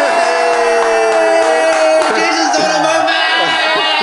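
A loud crowd cheer plays steadily for a few seconds, a dense wash of many voices shouting and whooping together with no single speaker standing out.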